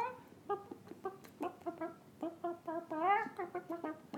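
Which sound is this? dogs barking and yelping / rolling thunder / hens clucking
hens clucking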